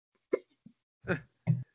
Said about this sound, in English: Right. And I have hiccups from meat mountain.